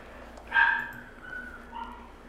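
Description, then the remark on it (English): A wild animal howls at night under the moon in a long, drawn-out wavering tone, rising then fading, followed by a second softer howl, over a steady low background hiss. “It's dark and the moon's out and they're howling.”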